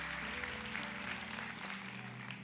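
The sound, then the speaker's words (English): A crowd at Go Church applauds steadily, a dense wash of many hands clapping at once that holds an even, loud level for the whole stretch with no voices breaking through, in appreciation of the men and women who serve and protect. “Keep clapping for a moment.”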